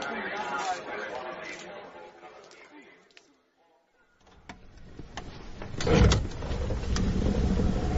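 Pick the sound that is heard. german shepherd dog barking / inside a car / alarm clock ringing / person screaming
inside a car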